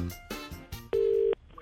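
telephone dialing tones

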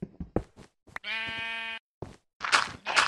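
sheep bleating

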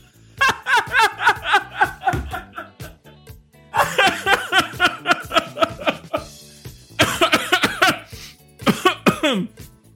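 coughing

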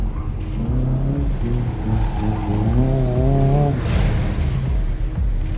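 car pulling up

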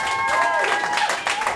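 audience clapping

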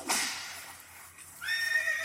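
horse neighing

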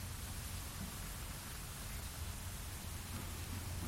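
rain falling

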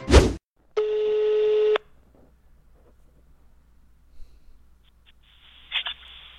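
telephone call ringing

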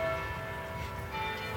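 church bells ringing

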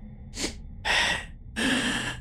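heavy breathing

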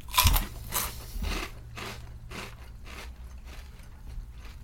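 crunching on potato chips

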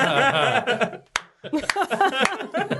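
slow clap

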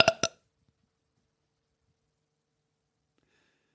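burp into the microphone

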